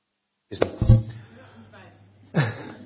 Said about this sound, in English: Because when Peter was talking to Christian wives, excuse me, I'm going to have a cough.